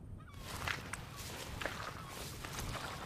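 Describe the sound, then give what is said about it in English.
Footsteps squelching across tidal mud flats at low tide in Papanui Inlet, a coastal wetland on the Otago Peninsula near Dunedin, on a windy mid-morning of about 15 degrees; a few irregular soft steps with wet sucking transients over a steady rush of wind noise. No voices are heard. “The tide is low and we are out walking on the mud flats.”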